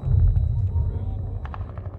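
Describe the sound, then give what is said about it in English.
Gunfire over a deep, steady rumble, with a few sharp cracks bunched near the end, as on a battlefield; a muffled voice may sit beneath it. “As I stand here, the sound of gunfire echoes in my ears.”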